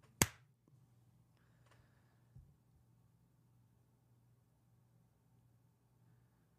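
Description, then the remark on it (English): A single sharp hand clap, made to test audio sync, cracks out at the start, then fades into a steady low hum with a faint soft knock a couple of seconds later. No one speaks. “Mutagrout wants me to clap so we could test the audio sync here. So we're going to clap.”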